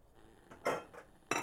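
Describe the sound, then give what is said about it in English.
A metal knife lying on top of dishes in a house's sink clinks against them, with three short bright clatters spaced unevenly over a quiet background, moderately soft. “As I was about to open a cupboard, I noticed a knife sitting on top of the rest of the dishes in the sink.”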